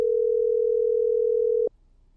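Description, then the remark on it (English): A steady, unbroken telephone dial tone hums at a single pitch for about a second and a half as a call is being placed to a company, then cuts off abruptly, leaving near silence. No one speaks. “So with no further ado, let's get them on the phone.”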